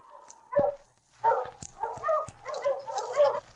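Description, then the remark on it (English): Sergeant Preston's sled dog team, stopped in front of Sam's cabin, barks and whimpers in a string of excited, overlapping bursts, with high whining yelps between sharper barks, moderately loud, with no talking. “When Sergeant Preston stopped his team in front of Sam's cabin, King, his big lead dog, walked at his side toward the door.”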